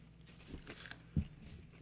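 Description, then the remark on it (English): Someone bites into and chews crunchy, slightly overcooked food, a few crisp crackling crunches followed by a soft, dull bite, all fairly quiet with no talking. “I like crunchy things.”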